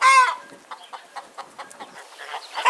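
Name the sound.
voice imitating chicken clucking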